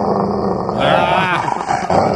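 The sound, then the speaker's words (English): A dog growls and barks in a rough, continuous burst lasting a couple of seconds, with a harsh, rumbling tone throughout. “Does it bark like that?”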